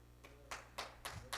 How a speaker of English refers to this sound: Come on, somebody else ought to clap because that's good preaching right there.